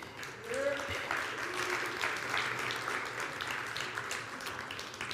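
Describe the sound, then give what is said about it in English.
Sustained audience applause for the kids, a dense steady patter of many hands clapping at an even loudness throughout, with a brief cheer or whoop rising early and faint voices mixed into the crowd noise. “Keep applauding for the kids.”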